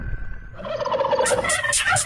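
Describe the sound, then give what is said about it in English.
A turkey gobbles in a loud, rapid warbling burst that builds into a quick series of sharp chattering pulses, with no voices around it. “Let's eat the bird is what we heard. It's turkey, turkey, turkey, we go.”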